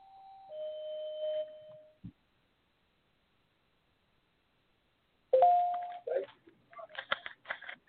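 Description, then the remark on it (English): A doorbell rings with a two-note descending chime that fades out. After a few seconds of silence, another tone sounds, followed by a flurry of clattering and knocking noises. “Let me respond to the door.”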